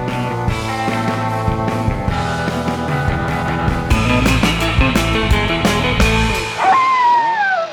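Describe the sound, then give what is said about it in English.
A dog, Dracula's dog from the Crown International Pictures film Dracula's Dog, barks and growls repeatedly over a loud, dense orchestral score, with the noise ending in a long, falling whine-like tone. No one speaks. “Dracula's dog, the meanest vampire of them all, has a four-legged friend and he's out for blood.”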